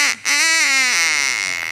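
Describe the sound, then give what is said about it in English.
A squeezed rubber souvenir toy duck bearing the Welcome to Fabulous Las Vegas sign, at a souvenir stand, gives a brief squeak, then a long, wheezy, buzzing quack that wavers and sags in pitch, loud, with no talking. “Look, they even have it here on this little toy duck.”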